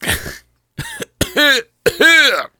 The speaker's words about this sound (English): That usually helps with his cough.